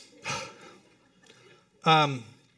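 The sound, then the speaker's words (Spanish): A deep breath drawn in sharply by a speaker who had been talking very fast, followed after a short pause by a brief voiced sound, like someone collecting themselves before speaking again. “Ok, tengo que respirar. Sentí que no estaba respirando.”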